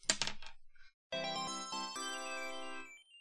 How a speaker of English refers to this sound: Okay, so I gotta roll 4 dice... I will roll 2 dice for the first 2 and 2 more dice for the second 2. So, rolling Sonic.